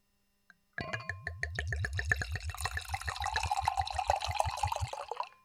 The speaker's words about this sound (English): Get some nice pour audio there.